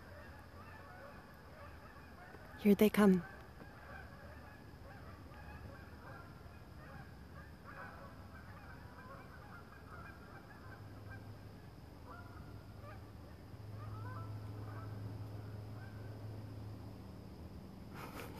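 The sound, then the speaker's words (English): A goose gives a short, loud double honk as geese go by, then the calls stop, leaving a steady outdoor hum and faint rustling in the bushes, with a person speaking quietly. “Or geese. I think that's geese.”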